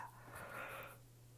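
A single breathy yawn, rising then fading over about a second, a soft airy exhale with a faint voiced tone, with no talking.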